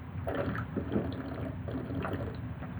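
Someone drinking water, a series of wet gulps and swallows with faint sloshing of liquid, repeating steadily over a few seconds with no talking.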